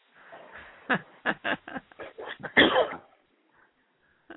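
A run of harsh coughs and throat clearing from someone who is feeling ill, roughly eight rapid bursts that build to a louder, rougher hack before trailing off into near silence.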